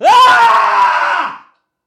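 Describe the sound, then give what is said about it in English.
A man lets out a loud, raw scream into a microphone, held for about a second and a half before breaking off into silence. “I'm sorry if that screaming's clipping your microphone.”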